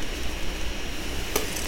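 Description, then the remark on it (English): A steady, airy whir of an old MacBook laptop's cooling fan runs throughout at an even level, fairly quiet, with one brief soft click near the end and no talking. “Fan break.”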